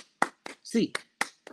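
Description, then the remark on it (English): A short run of sharp, steady hand claps, about five in quick succession, in a UCLA Bruins eight-count clap, with a brief voiced sound cutting in between them partway through. “As always, 8 clap time, baby.”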